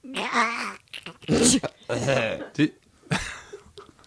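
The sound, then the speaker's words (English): A voice imitates scooping up a gloopy dead bird with a series of wet, gurgling, squelchy vocal bursts, several uneven pulses with short gaps, moderately loud and without words. “Can I get a quick sound on what that sounded like picking up the gloopy dead bird?”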